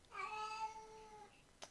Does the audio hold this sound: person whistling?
no